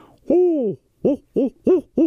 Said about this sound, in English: Yeah, I tell you what, I had an owl hooter hooting the other night, like 3-4 in the morning, just sitting there.